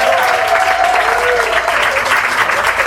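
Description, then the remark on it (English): A crowd claps steadily for the two hosts at a 22nd anniversary evening event, a dense, loud wash of applause sustained throughout, with a faint voice briefly audible beneath it. “I would like now to thank our two hosts who were so generous, who were very good to give another round of applause.”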